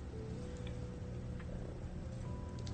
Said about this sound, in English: Kitty cat's awake.